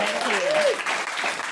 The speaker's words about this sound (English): A begrudging clap from the Hive Mind.